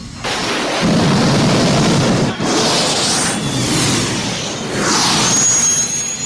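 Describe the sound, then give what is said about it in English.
Booster rockets activated by Spock in a turboshaft of the Enterprise fire with a loud, sustained roar and deep rumble, swelling in two rising whooshing surges with a faint high whine near the end. “Spock, the booster rockets? If I activate them now, Captain, we'll be propelled at an unpredictable rate.”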